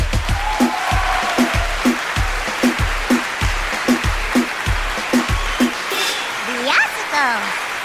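A crowd roars with applause and cheering after a stage performance, over a steady rhythmic thumping, like stomping or a beat, with whistles rising near the end.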